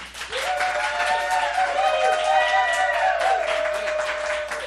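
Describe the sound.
A crowd bursts into sustained, loud applause, with dense clapping throughout and voices cheering and whooping over it.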